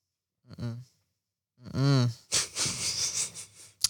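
A man coughs while playing video games on his Switch: two strained, wheezy vocal heaves followed by a run of harsh, raspy hacking bursts, fairly loud, with no talking.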